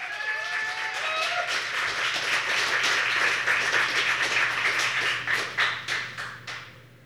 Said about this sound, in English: All right, and keep that applause going for your next poet up to the mic.